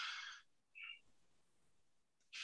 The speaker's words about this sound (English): So I'm just trying to find out what kind of bird that was.